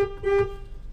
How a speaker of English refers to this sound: Why are we honking horns, guys?